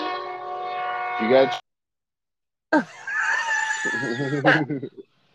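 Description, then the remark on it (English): Two passing trains sound their horns in turn: a loud, steady, chord-like blast, a short silence, then a second wavering horn blast with rumbling underneath before it cuts off. “okay, we got a train situation happening. Ooh, here. Dueling train.”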